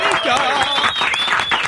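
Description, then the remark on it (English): A studio audience breaks into a sustained round of applause, dense steady clapping for under two seconds with excited voices and whoops rising over it. “Let's give you a big round of applause for being here.”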